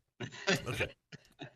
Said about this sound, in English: Sorry, I had to turn my voice down because I had a cough there for a second.